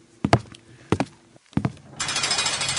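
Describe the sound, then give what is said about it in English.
Loud knocking at a door comes in three quick bursts of two or three sharp raps each, followed by a steady, hissing rustle. No one speaks. “Hold on a second, Scott. Let me see who's at the door.”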